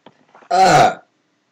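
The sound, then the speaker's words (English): A single loud burp after eating pizza and drinking a soda, lasting about half a second, voiced and rumbling with a rough, throaty texture, preceded by a few faint quiet noises and then silence. “I just ate pizza and then had a soda, so I burped.”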